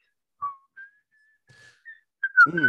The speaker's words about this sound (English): At this point, this is when the wind blows. So let's go ahead and just get that whistle on out of here.